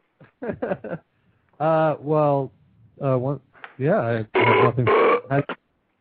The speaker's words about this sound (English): How do you follow that up, guys? You make burps of your own.